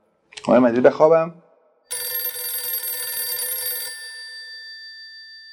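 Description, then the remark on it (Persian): A brief burst of voice, then a telephone rings once at one o'clock with a call from the speaker's sister, a bright, buzzing bell tone lasting about two seconds before fading out with a lingering tail. “ساعت 1 را نشه بودم که خواهرم تلفن میکنه که میدونی چه خبر شده؟”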